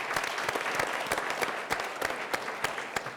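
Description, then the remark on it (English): An audience at an evening community event in Atlanta, put together by the Vision for Atlanta committee, applauds steadily, many hands clapping in a dense, even wash with sharper individual claps popping through, sustained at moderate loudness for the whole span. “Give yourselves a round of applause for being here.”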